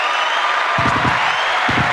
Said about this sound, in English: What my hand claps? Oh, my bad.